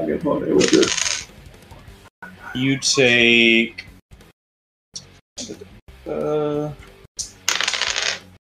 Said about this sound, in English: A lot of dice.